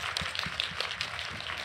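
An audience applauds steadily, a dense wash of many hands clapping at once with a bright, crackling texture, holding an even, moderate loudness throughout with no voices over it.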